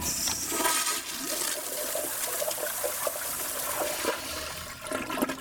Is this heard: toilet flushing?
yes